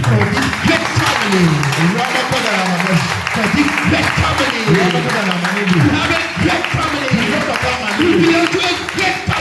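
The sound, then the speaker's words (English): An audience claps to the Lord steadily and loudly throughout, the dense patter of many hands blending with raised voices that rise and fall over the clapping. “To clap to the Lord.”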